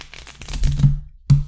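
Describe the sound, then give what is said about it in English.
Game pieces are shuffled across a tabletop, a busy run of overlapping clicks and clacks, then a brief pause before one more loud clatter. “I'm sure it's one in the table. It'll clickety-clack on the table.”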